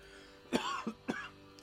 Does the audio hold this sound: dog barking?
no